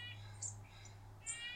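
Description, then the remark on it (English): Faint birdsong in early spring: a few short, high chirps and trills come in two small bursts over a low, steady background hum, with no voices. “When birds begin to sing again, you know they're getting ready for nesting season.”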